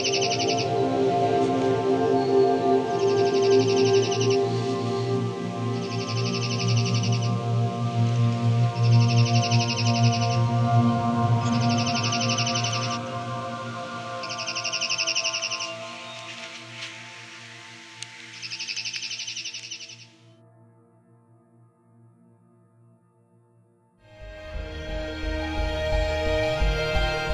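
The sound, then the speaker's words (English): A songbird sings loud, high trills, similar to those of the chipping sparrow and the pine warbler, about eight bursts at a steady pace over a low sustained musical drone, then the song stops and the background thins out. “Their song is a trill, similar to that of the chipping sparrow and the pine warbler, except loud enough to be heard several hundred feet away.”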